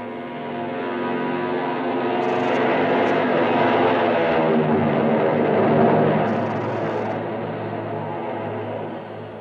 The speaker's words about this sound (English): We watched the plane take off, swing in heavy, thundering grace, and head east.